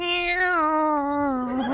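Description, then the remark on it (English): A single drawn-out meow from a cat at a pet shop, kept in a separate cage away from white mice. The meow is loud, holding a steady tone for nearly two seconds before sliding slightly downward at the end. “Cats do that to mice as a rule. Here they are. Meow.”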